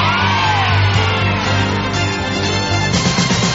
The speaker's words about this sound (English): And the crowd roars for Magnificent Mike!